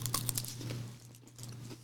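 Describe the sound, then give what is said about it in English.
Crunching as someone bites into and chews a Crunch Bar crispy chocolate bar, a quick cluster of dry crackles that fades, with a low steady hum underneath. “All right, so this is Crunch Bar.”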